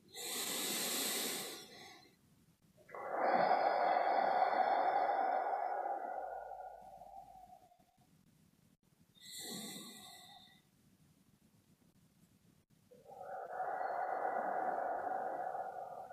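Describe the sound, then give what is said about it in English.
Slow, deep breaths in and out, three in all, closing a guided breathing session, each long airy inhale and exhale separated by short quiet pauses, with no talking. “Now bring our attention to taking three breaths in and out as a way of closing our time together.”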